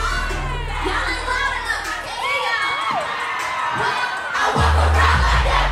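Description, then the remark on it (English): A large concert crowd cheers and screams continuously, with high excited shouts rising and falling, and a loud bass-heavy surge swelling in near the end. “The energy of the crowd only became more intense”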